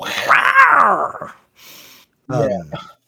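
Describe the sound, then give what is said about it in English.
A voice imitates a jungle cat growl: one loud, drawn-out throaty snarl with a wavering pitch, a short breathy pause, then a shorter second growl. “she makes a, like, jungle cat noise. It's very, it's a classic Scooby-Doo sound effect.”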